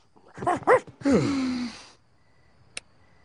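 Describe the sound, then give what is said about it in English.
A male dog that has just come in gives two quick, high yips followed by a longer, breathy whimper that slides downward in pitch, then falls quiet apart from a faint click. “Hey, Marge, wasn't that great when the dog came in here?”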